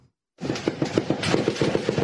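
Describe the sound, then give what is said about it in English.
Automatic machine gun fire on the Reynosa international bridge over the Rio Grande, a U.S.-Mexico border crossing with traffic at a standstill, rattles off in a fast, steady stream of sharp cracks, loud and continuous for nearly two seconds after a brief silence, with no voices. “You can hear the automatic machine gun fire.”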